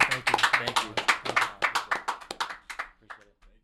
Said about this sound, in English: Can we get a round of applause? Thank you.